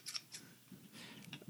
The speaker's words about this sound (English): Are we going to take a break so you don't have to hear the scissor sound? Because if we do... I can cut this out.